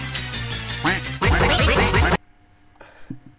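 A duck quacks loudly in a quick run of raspy, nasal calls that cut off abruptly, leaving near silence with only a faint brief sound afterward.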